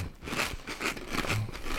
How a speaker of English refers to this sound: Okay. All right. Ready? Three, two, one. Crunchy chip.